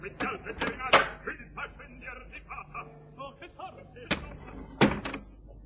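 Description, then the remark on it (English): A theatre box door being handled: a couple of sharp wooden clunks early on, then two more as it swings shut, with faint voices murmuring in between. “Come on, open the box door, darling.”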